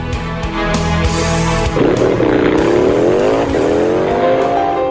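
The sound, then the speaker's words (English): Loud motorcycle engines roar continuously at the 82nd Annual Motorcycle Rally in Sturgis, South Dakota, a steady low rumble that shifts into rising, wavering revs partway through. No voices, just the sustained engine noise. “And today, from Sturgis, South Dakota, 82nd Annual Motorcycle Rally, we're talking about belonging, because that's what Sturgis Motorcycle Rally is about.”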